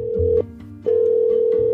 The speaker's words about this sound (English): calling her grandma on the phone.